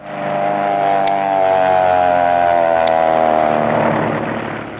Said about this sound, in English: Say, fellas, you all know what that is. An airplane making a power dive.